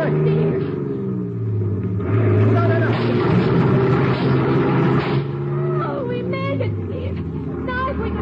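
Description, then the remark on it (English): A heavy truck engine roars steadily, swelling into a harsh, noisy surge mid-way as the truck crashes through a barricade on a bridge, with voices calling out over the rumble. “Step on the gas, Teal. We're going to crash that barricade on the bridge.”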